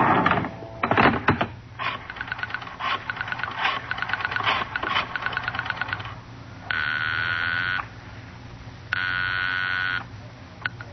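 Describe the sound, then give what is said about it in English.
A telephone is dialed in a phone booth near the door of a bar at almost 11 at night, with bursts of rapid mechanical clicks, then two long, steady ringing tones sound on the line with a pause between them. No voices. “There's a phone booth near the door.”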